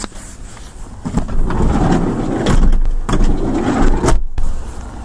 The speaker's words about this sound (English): Lots of traffic, lots of activity, perfect.